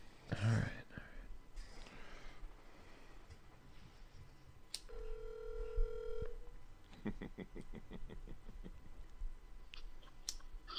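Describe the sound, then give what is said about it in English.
A telephone rings with one steady electronic tone lasting over a second, followed by a quick burst of pulsing beeps, amid handling clicks and a low, murmury background. “Take the phone call.”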